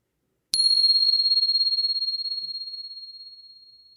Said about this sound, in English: And here comes the bell.